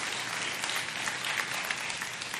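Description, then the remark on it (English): An audience bursts into sustained applause, a dense, steady wash of many hands clapping at once with no voices standing out, holding an even level throughout. “Give the Lord a hand clap of praise or rejoice.”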